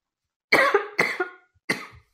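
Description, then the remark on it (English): A short coughing fit from a drink going down the wrong way while alternating coffee and mineral water: three harsh, loud coughs in quick succession, the first two running together with a catch in each, then a final sharper cough after a brief pause. “And my esophagus seems to have got slightly confused as to which one I'm drinking, so it's decided to go on strike.”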